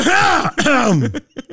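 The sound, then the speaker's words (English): A loud throat clearing with a strained, groaning vocal sound, followed by a few short, rough coughs that trail off. “You're going to get a lot of me coughing on this episode.”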